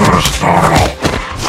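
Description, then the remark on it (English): A loud, harsh growl from a fire-breathing werewolf monster snarls continuously for about a second and a half, rough and guttural with a deep rumbling core and a few rising swells, with no talking. “Now this is what I call a monster! I don't need to have a degree in history to know what this is. Classic werewolf.”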